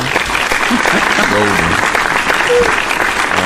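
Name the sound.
hand claps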